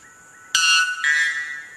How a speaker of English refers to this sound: That's the coolest noise in the world. Okay. Yeah. So what is it? It's a bird. It is. Can I just put this into context? Yeah. So this is the world's loudest bird. It is. 125? Decibels.